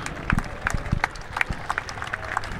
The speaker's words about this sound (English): Can obviously get some background noise there, clapping, but someone's just put it to about 15 feet on 18, probably with a 6-iron.